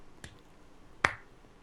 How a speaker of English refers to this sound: He's giving you the golf clap.